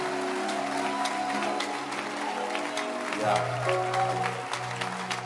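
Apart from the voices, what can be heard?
audience clapping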